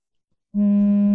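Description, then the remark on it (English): After a brief silence, a telephone starts ringing with a loud, steady electronic buzz that cuts in abruptly and holds unbroken to the end, with no voices. “someone's ringing it.”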